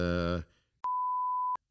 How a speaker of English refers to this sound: I can, but it's just going to be, for example, beep, for example, okay, beep.